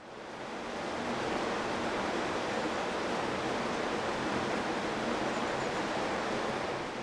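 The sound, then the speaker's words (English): The River Fleet rushes steadily through its clay brick tunnel beneath the intersection of Farringdon Road and Charterhouse Street, heard through a street grate: a dense, continuous roar of water that swells in over the first second and then holds constant, with no voices. “if, on a quiet night, you happen to cross the Farringdon Road where it meets Charterhouse Street, there is a grate in the middle of the intersection through which you may just hear the River Fleet in its clay brick tunnel running beneath you still.”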